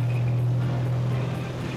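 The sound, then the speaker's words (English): The old diesel engine of an older-model World War II Sherman tank starts up and rumbles steadily, a loud, deep, unbroken drone with a low throbbing hum and no voices. “Let's fire that bad boy up, and don't be afraid of it. Got an old diesel engine in it.”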